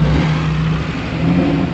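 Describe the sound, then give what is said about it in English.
A large car engine revs steadily, a deep, throaty rumble that holds loud and even as the vehicle pulls away, with a brief rise in pitch toward the end. “The smaller cars seem to do better, but this is quite a big vehicle.”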